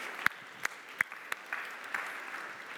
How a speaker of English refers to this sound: Guys, thanks. Thanks so much. You can all go and take a seat. Well done. Well done. A round of applause.